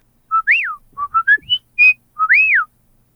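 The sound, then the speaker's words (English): A person whistles a short signal tune: a rising-falling swoop, a few quick choppy notes, a sharp high chirp, then the swoop repeated. Clear and loud, with no talking. “Nah, it's not like it's a complicated whistle, but people don't go around going.”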